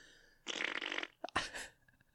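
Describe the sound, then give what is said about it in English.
A loud, wet raspberry blown with the lips like a fart: one long sputtering burst, a brief pause, then a shorter spluttering second burst, with no talking. “It's a big wet fart for me.”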